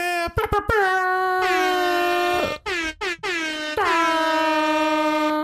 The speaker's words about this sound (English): Is that air horn appropriation? No. Because it's used everywhere. Technically, it's not.